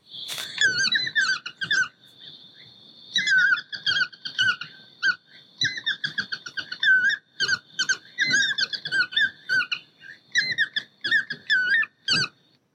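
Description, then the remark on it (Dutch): A yellow-throated toucan's call played through a phone: loud, nasal, high-pitched yelping squeals in rapid irregular bursts, repeating steadily for over twelve seconds with no talking. “Nu alleen nog hopen dat we straks ook het geluid van die yellow-throated gaan horen.”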